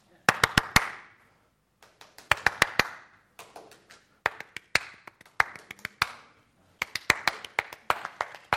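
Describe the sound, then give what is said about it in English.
Someone claps out the rhythm of Beethoven's Fifth: loud, sharp hand claps in short repeated bursts of three or four, each group followed by a brief pause. “I'm going to clap a well-known rhythm, see who the first person is to get it.”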